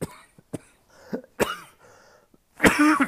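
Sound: cough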